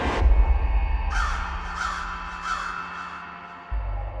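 A crow gives three harsh, raspy caws at a steady, evenly spaced rhythm, each call short and grating, over a low continuous rumble with no talking.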